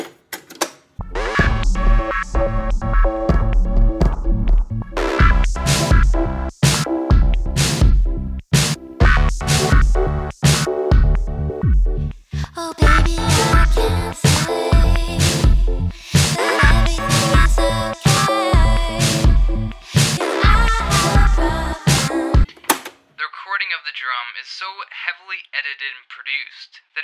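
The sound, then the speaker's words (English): Loud, sharp snare drum hits crack repeatedly through a dense band mix on the fifth track of an album. Each hit has a short burst of reverb that is abruptly cut off by digital editing, before the track gives way to a thin sustained tone. “Specific ring of reverb cut short.”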